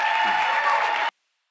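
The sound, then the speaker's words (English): A burst of audience applause welcoming a guest speaker as he comes on, a dense, steady wash of clapping that holds at full strength for about a second and then cuts off abruptly into silence. “So I was so excited when he said he'd come, so I'm going to invite him now, and if you could just give him a huge round of applause as he comes, that'd be awesome.”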